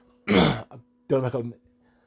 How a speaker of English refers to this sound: Sorry, guys, a bit of a cough at the minute.